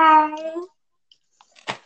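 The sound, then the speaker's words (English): A person gives one drawn-out, nasal, loud meow imitating a cat, followed by a brief pause and a few soft clicks and rustling noises. “What are you, Gary, the cat snail thing?”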